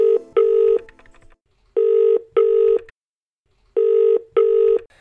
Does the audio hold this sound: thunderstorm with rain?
no